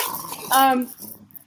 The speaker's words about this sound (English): We took the collar off our dog, but neglected to hide all of his squeaky toys.